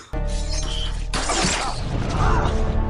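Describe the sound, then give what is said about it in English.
An arrow impact sound effect: a sharp, loud hit that bursts into a crashing, shattering rush and rings on to the end, without any talking. “Are we getting a sound effect arrow through”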